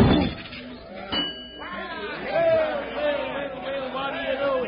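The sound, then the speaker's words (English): A single hard hammer strike rings a strength-tester bell on the first try, its bright metallic tone sustaining briefly before fading under the murmur of a crowd and voices. “Bell on the first try.”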